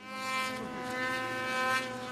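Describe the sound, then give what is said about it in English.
A snowmobile engine whines with a thin, buzzing drone, holding a steady pitch and growing slightly louder as it heads this way. No voices are heard. “It's a snowmobile heading this way!”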